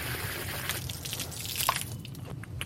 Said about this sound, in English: You want to wash your gear down. So just with a basic hose, fresh water rinse. I'm going to rinse inside the rotor.